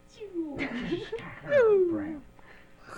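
A Capellan power cat, a large alien cat-like creature, snarls and yowls, ending in a loud, drawn-out yowl that slides downward in pitch before fading into a softer growl.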